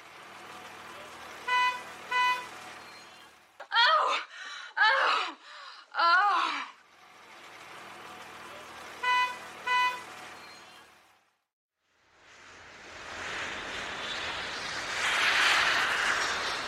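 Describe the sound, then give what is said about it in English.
A car driving sound effect: an engine hums steadily while a horn honks twice in quick pairs, then again; a voice groans in between, and a loud rushing roar builds at the end. “We had the car driving with With the big O.”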